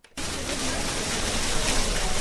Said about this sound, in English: Thousands gathered around the splashing Marshall Memorial Fountain, unified in the theme of "We Will Never Forget."